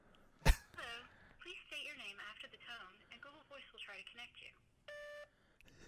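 A phone call is placed to a made-up phone number with an area code: a sharp thump, a stretch of chirpy electronic phone tones, then a single steady ringing beep near the end, clear.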